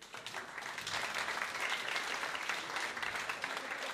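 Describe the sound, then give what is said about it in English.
Gentle, polite applause from an audience trying out a practice round of golf-style claps at a comedy show, a steady patter of many hands clapping at moderate volume throughout, with no cheering or voices. “Now, in this first round of claps, I want you to make noise for everyone, a little bit. Like, you're at the golf, and you've just seen a lovely little...”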